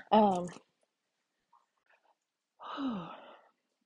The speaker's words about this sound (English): That's another symptom too, if you hear me breathing really hard. It's like it's hard to catch my breath.